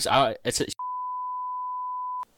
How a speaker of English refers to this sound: I'll beep that out. It's anonymous. Yeah, anonymous.